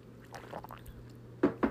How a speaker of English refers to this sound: Oh my gosh, I'm a loud drinker, I guess. It seems super loud.